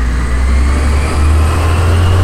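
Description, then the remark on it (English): A garbage truck rumbles past outside a porch on a morning, its heavy engine droning loudly with a deep, steady low-end growl and a faint rising whine, no voices over it. “Sorry about this garbage truck.”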